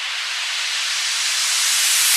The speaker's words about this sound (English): Another element that's incredibly important is white noise, which I've used a fair amount of, usually as little risers that transition us from one section to another.